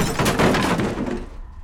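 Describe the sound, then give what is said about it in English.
A table is flipped over with a loud, heavy crash, followed by a short burst of clattering and breaking objects that quickly fades out, with no voices. “And you guys suddenly get knocked out of the trance as the table gets flipped over.”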